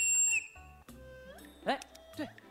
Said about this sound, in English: Oh, he's pulled out a whistle.